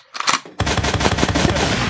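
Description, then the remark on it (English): A gunshot sound effect: after a brief softer lead-in, a loud, sustained burst of rapid automatic gunfire crackles on steadily until the end, with no voices. “Dude, load, gun, air horn.”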